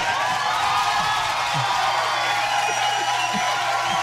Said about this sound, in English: And the crowd goes wild.